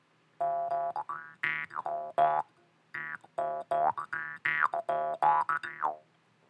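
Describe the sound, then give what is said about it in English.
A voice imitates a big-legged frog hopping at a fast sprint in a long, rolling, skipping gait, with a rapid run of springy, warbling boings, each pitch bending up and down, about a dozen in two loud bursts separated by a short pause. “It's like a nice long rolling gait, but I mean, you know, he's got big old log frog legs, so, you know, boing, boing, boing, boing, he's still covering a massive amount of ground doing that sort of thing.”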